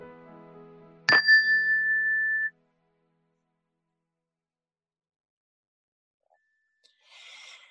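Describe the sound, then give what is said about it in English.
A single meditation chime is struck once to begin a guided meditation, a clear bright ring that sustains and fades over about a second, followed by silence and then a faint breathy rustle. “We'll begin the meditation with the ring of the chime and end the meditation with the ring of the chime.”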